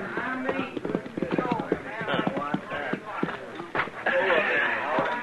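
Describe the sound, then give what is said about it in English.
Horses' hooves clip-clop steadily at a walking pace as riders ride up to a chuck wagon, while a man's voice, the cook's, hollers loudly over them for the men to come and get it. “We rode up to the chuck wagon just as the cook was hollering for the men to come and get it.”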